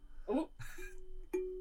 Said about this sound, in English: Got a doorbell.